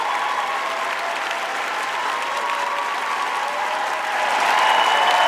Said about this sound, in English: And let me also inform you that as of right now, we have over 7,310 listens on Spotify and Anchor. Give yourselves a round of applause for that right now. Yes!